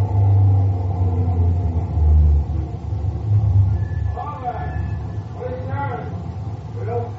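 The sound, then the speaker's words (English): A deep truck engine rumbles steadily, then eases off as the vehicle slows to a stop, leaving muffled voices talking over the idling low hum. “Coming to the roadblock? Could be. Yeah, he's stopping.”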